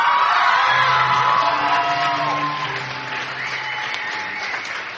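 A crowd applauds steadily at a baptism service, with whoops and cheers rising over the clapping for the next tall man to be baptized. It is a dense, loud wash of noise that eases slightly toward the end.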